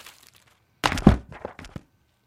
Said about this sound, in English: He knocks over the book, the little baby, I'm calling him the baby owl, and we see that hidden behind the book, he's been eating all and slurping, as you heard, all kinds of fast food.